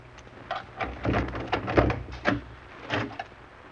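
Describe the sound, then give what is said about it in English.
A heavy, locked cellar door is unlocked and pulled open: a string of rattling metallic clicks and dull clunks over a low hum, with no one talking. “We took the stairs down to one of the cellars, walked along some dark halls, and then stopped in front of a locked door.”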